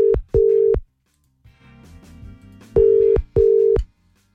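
A telephone line tone while placing a call on air to wish someone good morning: two short steady beeps, a pause filled with faint background clatter, then two more beeps, clear.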